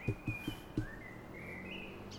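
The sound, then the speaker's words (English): Birds chirp and sing outdoors in a thin, steady run of high whistling notes that drifts in pitch. A few soft low thumps sound near the start, and no one speaks. “I really enjoy the sound of the birds.”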